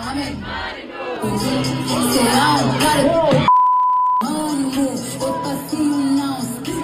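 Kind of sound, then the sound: crowd, concert crowd cheering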